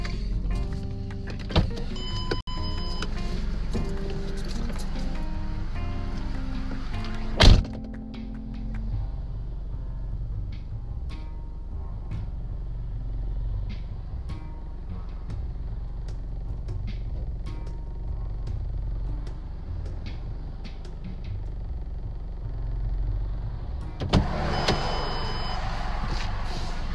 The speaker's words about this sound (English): And give me a moment. I gotta step out of the car.